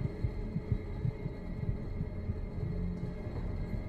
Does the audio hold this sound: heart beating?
yes